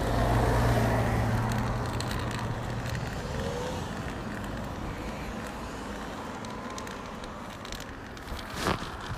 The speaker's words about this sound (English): Could that be a bus? No, it's a motorcycle. There's a woman across the road with her kids, or 8 kid, and the motorbike has stopped at the corner. Oh, listen to that engine roar.